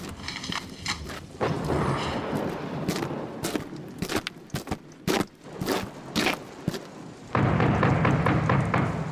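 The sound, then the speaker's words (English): Steady hissing rain mixed with crunchy footsteps and sharp scraping clicks, then a loud, deep rumble of thunder swells in for the last couple of seconds. “Oh, crap, rain.”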